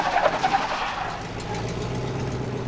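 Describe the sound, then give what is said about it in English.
A truck engine rumbles as the truck is being parked, a steady low drone with a rough mechanical texture and a brief louder swell near the start, settling into an even idle-like hum. “Okay, yeah, park the truck.”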